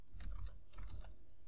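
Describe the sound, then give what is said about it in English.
Someone types text on a computer keyboard using the text tool of an image-editing program: a quick, irregular run of soft key clicks, fairly quiet, with a low background hum and no voices. “To keep it simple, I'm going to select the text tool. And I'm just going to start typing.”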